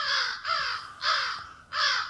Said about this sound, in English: Where are all the birds flying away? I hear something behind us.